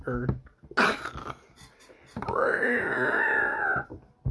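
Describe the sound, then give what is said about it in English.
During a tabletop role-playing game, a voice imitates the shriek of a creature flung into a wall: a short, rough vocal burst, then a long, loud, strained screech that holds a high pitch for over a second before breaking off. “Shrieks.”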